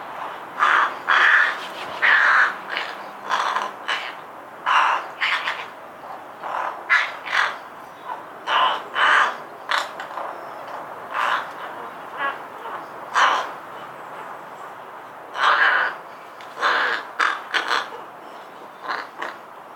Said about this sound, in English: Generally, I'll get one or two birds in my garden each day. Rooks are well known as a raucous social bird that roosts in large colonies. They're often seen in large flocks roaming through farm fields, foraging for grubs and earthworms